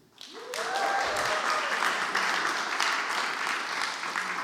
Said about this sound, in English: You can give them a cheer.